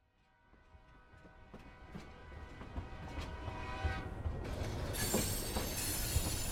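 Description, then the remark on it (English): A train rumbles louder as its wheels squeal in sustained metallic tones, then a sudden, loud hiss of air brakes bursts in and continues to the end. No voices. “The train's hissing air brakes and squealing wheels startled them awake.”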